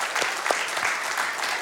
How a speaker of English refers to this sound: So I'd like us just to give an applause of thanks for those who do that kind of ministry for us here at the church.